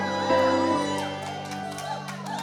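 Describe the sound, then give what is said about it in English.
A crowd shouts and cheers together in a steady, lively roar, many overlapping voices whooping and calling out for a couple of seconds, fairly loud, with no clear words. “I strongly recommend a bit of shouting.”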